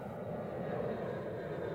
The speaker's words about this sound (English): The sound of an airplane. I can hear it, but I can't see it. Where do you suppose the plane may be going?